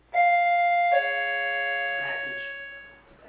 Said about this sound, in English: Package. UPS. It's hilarious. Jeez, that was awesome. I didn't know there was a doorbell. I was ready for it.